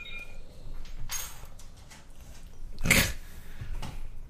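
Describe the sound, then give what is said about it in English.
A dog being petted snorts and huffs, three breathy bursts spaced a second or so apart, the middle one loudest, with soft rustling in between and no talking. “I'm petting dogs.”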